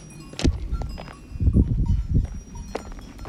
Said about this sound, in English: I don't know how I'm gonna get through, honestly. They all have big horns. I need to get through, guys. goats.